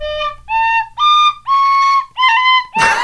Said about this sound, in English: We need to get you a better instrument, though, because God almighty, tin whistle.